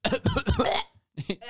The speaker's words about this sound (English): 100 coughs later.